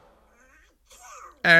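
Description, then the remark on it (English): Donald Duck, a cartoon duck, sneezes: a faint, raspy quacking voice wheezes and builds up for about a second, then erupts in one sudden, loud, honking sneeze at the very end. “And he just sneezed.”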